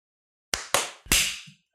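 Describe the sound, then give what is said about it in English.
Three loud, sharp hand claps in quick succession, a group clapping in sync on the count of 15 using time.is, each ringing briefly before fading; the final clap sounds slightly smeared. No voices. “All right, let's clap on 15.”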